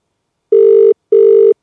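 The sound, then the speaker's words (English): Two steady electronic tones of a telephone ringback on an outgoing call to a man, each lasting under half a second with a short gap between, clear with no talking. “It's ringing.”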